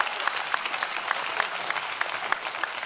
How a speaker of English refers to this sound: Your clapping is so bad because you don't understand this is salvation for you.